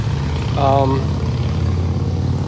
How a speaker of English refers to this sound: Like sitting here at the lake on a beautiful morning, it's probably in the high 60s, looking at a still lake and the reflection in the clouds. Like, it's very peaceful, except for that motorcycle driving by right now.